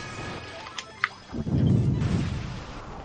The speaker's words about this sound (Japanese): あ、こいつは大砲攻撃したのか。